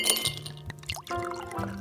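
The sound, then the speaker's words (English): Someone pours a strong drink into a glass late at night, with a few bright clinks and ringing glassy tones over about two seconds, no voices. “You stop to pour yourself a drink.”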